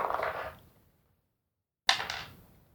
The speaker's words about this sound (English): Just roll the dice.